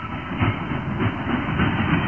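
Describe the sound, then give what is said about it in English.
Train cars rumble and clatter along the rails in a steady, loud roar, with a repeating clickety-clack rhythm roughly every half second. No voices are heard. “An old baggage car, huh?”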